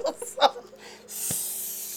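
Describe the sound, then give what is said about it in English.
A voice makes a few short vocal sounds, then produces a long, steady hissing noise imitating a spray paint can spray painting salt, fairly loud for about a second until the end. “Spray paint the salt.”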